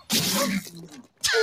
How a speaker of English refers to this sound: Bless you.